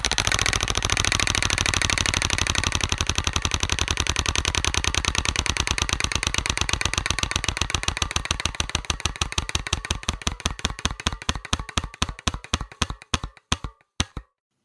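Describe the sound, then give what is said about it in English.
A prize wheel spins during a team card game with a rapid, dense ratchet of clicks that gradually slow and spread apart until a few last distinct ticks bring it to a stop. Fairly loud, no voices. “I'm not going to roll the dice, but I'm going to spin the wheel.”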